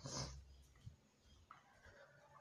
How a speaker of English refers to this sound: Just a second, my dogs are barking a lot. Just let me check what the fuck is going on here.